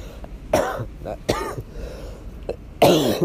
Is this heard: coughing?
yes